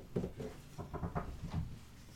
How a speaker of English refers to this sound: I'm going to go knock on wood.